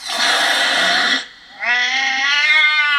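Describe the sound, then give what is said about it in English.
A cat hiss sound effect: a loud, breathy burst lasting about a second, then after a brief pause a drawn-out, strained yowl. Clear, with no talking. “I just prefer the hiss. Yeah. The cat hiss. Put it in.”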